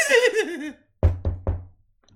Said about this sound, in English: Yeah, so knock on the door. You have to open Igor, it. Yeah, Igor's at the door.